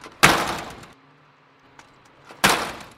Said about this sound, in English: We tried slamming it over and over again. And when that didn't work, we tried kicking it.